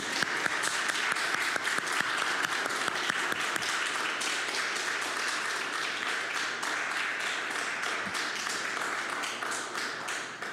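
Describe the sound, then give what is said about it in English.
An audience applauds the interns who stood up, with steady, dense clapping that holds at an even level for about ten seconds, with no voices breaking through. “Is that measly little clap?”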